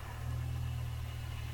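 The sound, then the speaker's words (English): A powerful twin-turbo car engine roars, a loud, deep rumble holding steady for a moment with no talking over it. “Putting up all your Instagram videos with the twin turbo all out there in Dubai.”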